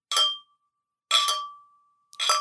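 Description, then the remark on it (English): Three bright metallic clinks, about a second apart, each ringing out with a sustained chime-like tone that slowly fades; clear, with no talking. “Sound like a wind chime.”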